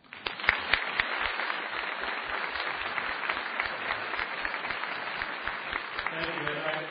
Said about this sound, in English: But before I do so, I'd like to invite a round of applause to congratulate him on his third Emmy Award.